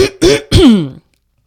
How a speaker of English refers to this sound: Gotta clear my throat. Gotta clear my throat because I have allergies and I spent 15 years of my life smoking. So here we go.